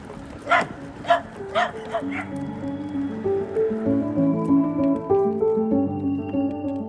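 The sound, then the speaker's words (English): Many dogs bark four times in quick, sharp succession near the start, loud, then the barking stops and a steady, layered tonal drone carries on to the end. “Lots of dogs, huh?”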